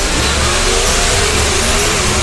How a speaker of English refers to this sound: And we're going to listen to 500 cubic inch engines at 10,000 RPM right about now.